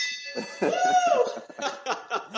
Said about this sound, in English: I love it, man. There's that beautiful victory bell. I love it.